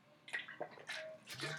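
Water is poured into a glass for drinking in a few short splashing bursts, fairly quiet, with gurgling trickles between pours and no talking.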